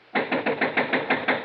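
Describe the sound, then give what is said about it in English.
Rapid, steady pounding on the wooden door of a one-story clapboard farmhouse: about eight loud, evenly spaced knocks in a quick insistent rhythm, with no voices. “open up this door. I'll break it down.”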